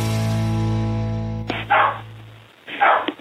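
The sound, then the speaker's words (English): A spaniel barks twice, sharp, with a pause between barks, after a sustained low humming tone cuts off. “It's the first time we've gotten a call from a dog.”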